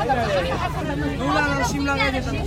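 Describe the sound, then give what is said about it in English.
Dense crowd chatter on a Jerusalem tram, many overlapping voices talking at once over a steady low rumble of the moving vehicle, with no single voice standing out. “For those who fear that the train will fundamentally change Jerusalem's character, well, rest assured, just because there's a new tram in town doesn't mean Jerusalem's noise and crowds have disappeared.”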